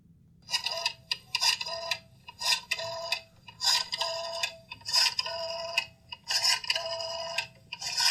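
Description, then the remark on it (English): Cell phone keypad clicks while someone types a text: a dozen or so crisp, beeping key presses come in quick pairs and short bursts with brief pauses between. They are clear, with no talking. “He was just calling somebody on his cell phone, and this is what it sounded like.”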